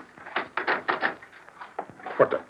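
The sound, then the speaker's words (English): A door is opened with a series of clattering knocks and creaks, several quick wooden clunks over a couple of seconds, ending in a louder rattle. “Open the door.”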